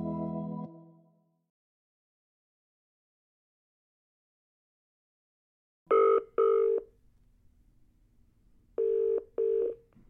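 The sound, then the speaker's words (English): A phone call being connected rings through on the line: after a pause, two double rings of a steady mid-pitched tone sound, each pair a quick burr-burr, with faint line hiss between them. “Would you like me to connect you? Yes, please. Connect you now.”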